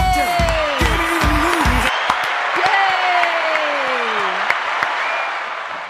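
A crowd applauds steadily with scattered sharp claps, while rising and falling whoops and whistles from the audience slide over the noise. A low thumping accompaniment drops out after the first two seconds.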